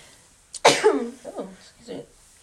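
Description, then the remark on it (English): A single loud sneeze bursts out with a sharp breathy onset and a voiced trailing sound, followed by a couple of brief murmurs. “Bless you, sis.”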